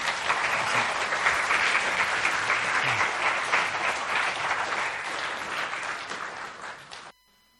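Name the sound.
audience round of applause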